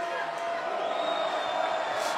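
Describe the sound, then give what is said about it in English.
Basketball fans at a district championship game, tied at 53 in the third quarter, scream and roar after a missed free throw in a dense, steady wall of crowd noise that stays loud for the whole stretch, with a brief brighter swell of shouting near the end. “The fans screaming that behind us.”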